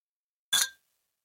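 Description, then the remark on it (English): A single bright clink of beer drinks tapped together in a toast, fairly loud, with a short ringing tone that fades within a fraction of a second. No one speaks. “My mic, and then you'll clink it on my side.”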